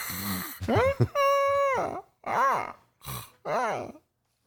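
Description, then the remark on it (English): Someone imitates a snorting eagle: a harsh snort, a long steady whining cry, then a few short rising-and-falling yelps broken by sniffy bursts, all loud and voiced alone. “So what kind of like bird sound would a snorting eagle make?”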